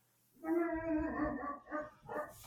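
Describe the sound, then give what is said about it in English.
A dog barks, starting with a long, drawn-out, howl-like bark followed by two shorter barks in quick succession, with no one talking. “Sorry, I muted myself because my dog barked.”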